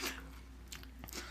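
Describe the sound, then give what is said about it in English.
Quiet chewing of crunchy, wet coleslaw: a few irregular crunches and mouth smacks over a low, steady background hum, with no talking. “People aren't going to want to hear you chewing, babe.”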